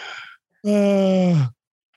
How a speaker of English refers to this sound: I'm so out of breath from bending over to put on my shoe. Yeah. Sir, why are you breathing so heavy? Because I'm fat. Because I'm putting my shoes on.